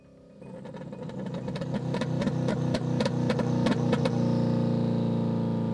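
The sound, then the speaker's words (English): An old car engine, started in March 2020 for the first time in 14 or 15 years using a central heating thermocouple, cranks and splutters in a series of uneven bursts, then catches and settles into a steady, loud running rumble. “After a few coughs and splutters, it burst into life after 14 or 15 years.”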